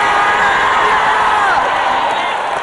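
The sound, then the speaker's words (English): A church audience cheers and shouts together, a loud, dense roar of many voices sustained throughout without pause. “Come on, let the church scream.”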